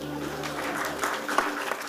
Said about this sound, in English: So you see, yesterday they have come. Clap for them.